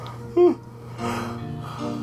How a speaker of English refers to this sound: excuse me, terrible time to yawn in the middle of a sentence.